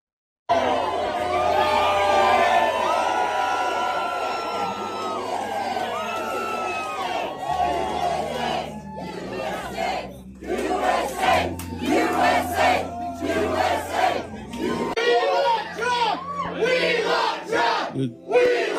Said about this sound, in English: Crowd here saying we want Trump.